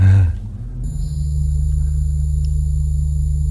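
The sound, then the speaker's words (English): A laser arc trap sound effect: a short sharp burst gives way to a steady, loud, low electrical hum with a thin high whine held above it, droning evenly without voices. “Wait, that was laser arc trap.”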